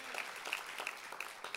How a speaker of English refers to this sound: Come on, clap right now if you believe his mercy will endure through all generations.